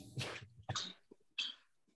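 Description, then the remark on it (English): Three harsh, breathy coughs go straight into the microphone, the first longest, then two shorter bursts spaced out with brief pauses between. No one speaks. “Yeah, just coughing straight into the pod.”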